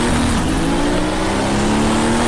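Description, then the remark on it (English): A loud race car engine drones steadily with a slowly rising pitch as the car leaves the pit lane heading toward Eau Rouge, carrying turbo chirping and the fluttering whoosh of a butterfly valve, no voices present. “Hear that butterfly and the turbo chirping right away as we head towards Eau Rouge for the first time out of the pit lane.”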